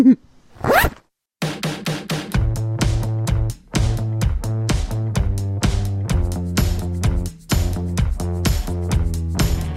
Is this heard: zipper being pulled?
yes